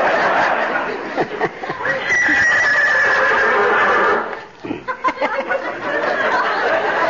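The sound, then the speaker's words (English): A horse named Lillian whinnies loudly, a long shrill neigh followed, after a brief dip, by a second quavering whinny that trembles to an end, in the radio show Fibber McGee and Molly. “You two horses ought to know each other.”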